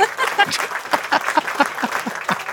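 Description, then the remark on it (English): A burst of applause and cheering put in as a cheer for a portrait-art signature chart: dense, steady clapping from a crowd with scattered whoops layered over it, holding at a fairly loud level throughout without pause. “Yes, everyone, clap.”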